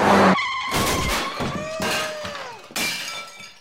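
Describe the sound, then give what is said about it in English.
A car heading toward a child in the road: its tires screech in a loud, sharp skid, followed by a crunching crash with shattering glass and scattered debris, with no one talking. “Oh my God, that car is heading right for that child.”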